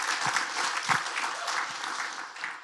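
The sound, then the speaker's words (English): Audience applause from a group of men, a steady wash of many hands clapping at moderate volume, with a few sharper claps standing out, no voices heard over it. “Men, you should give them some applause right now.”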